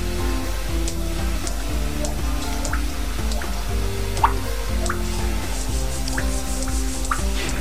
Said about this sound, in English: That's it. That's the drip. And back home we have cisterns, and they would be 75 feet down, and the water's dripping down in here, and you hear it echoing back. That's what it sounds like.